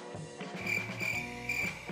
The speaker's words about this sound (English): I'm gonna insert cricket sound effects right there. The crickets.